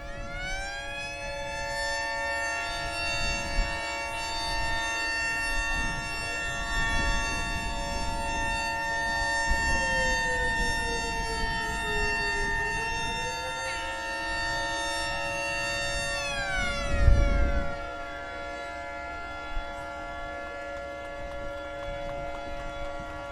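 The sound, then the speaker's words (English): Many modern boats blare their horns together in a town ritual, a sustained, layered chord with each boat holding a different pitch, some tones bending downward before most cut off together and a low rumble sounds. “In order to sort of bring the boats right into the ritual, all the boats blast their horn.”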